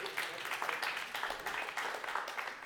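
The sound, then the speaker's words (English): An audience breaks into an applause break after a man says he is 62, many hands clapping together in a continuous wash of noise that holds at an even level throughout. “That got an applause break because nobody thought you were 62.”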